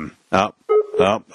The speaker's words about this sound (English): I hear the Among Us beeps again.